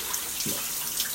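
shower water running

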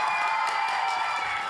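audience applause and cheering

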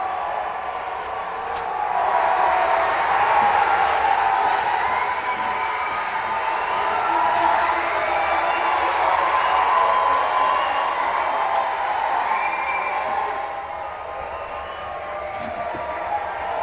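audience applause and cheering

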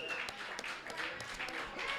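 audience round of applause

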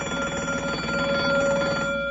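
bell ringing

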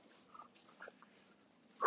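dog

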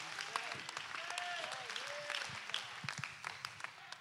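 audience clapping

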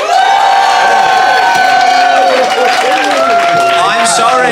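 audience applauding and cheering

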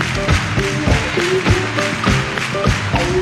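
people clapping hands

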